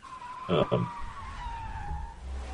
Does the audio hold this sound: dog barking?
no